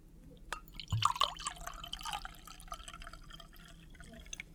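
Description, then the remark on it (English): Liquid splashes and trickles into a glass, a short burst of bright gurgling and dripping that fades into a quiet, steady pour with no voices. “It looks like your glass is going a little bit empty there”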